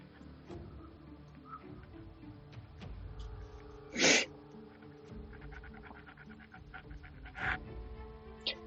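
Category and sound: household object, pencil scratching on paper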